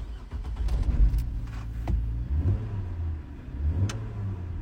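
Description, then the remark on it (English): A Dodge car engine rumbles and revs, with low throbbing harmonics rising and falling through a couple of throttle blips over a steady idle-like drone, no voices present. “Hey, Dodge owners, can you do this?”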